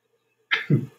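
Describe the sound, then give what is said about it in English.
After a moment of quiet, a sharp, hissing intake of breath is followed by a short, muffled huff, like a sneeze that starts but never fully arrives. It is fairly loud, with no talking. “Sorry, I thought I was going to sneeze.”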